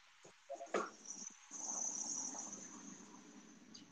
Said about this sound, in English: That's another dog.